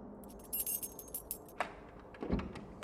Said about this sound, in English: let me have the keys.